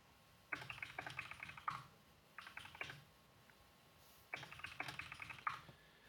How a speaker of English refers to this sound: I can't imagine what it's like to listen to one of these episodes with just us silently sitting here while all you hear is typing on the keyboard.